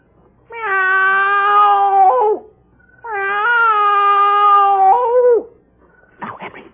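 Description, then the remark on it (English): A man on the front porch of his house imitates a cat with two long, drawn-out meows, loud, separated by a short pause, followed by a brief scratchy noise. “Now, I meow twice.”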